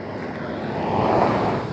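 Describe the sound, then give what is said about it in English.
Cars driving by make a steady, broad rushing hiss that swells to its loudest in the middle and then eases off slightly, with no voices. “So I guess cars just driving by there.”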